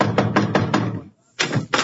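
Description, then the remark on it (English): A quick series of five sharp knocks on the door of a house, a brief pause, then two more raps, loud with no one speaking. “Knock on the door.”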